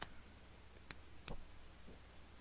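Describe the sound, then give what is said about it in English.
Three crisp pen clicks, spaced irregularly over a couple of seconds, fairly quiet against a faint background hum, with no talking. “That was want. My pen clicking.”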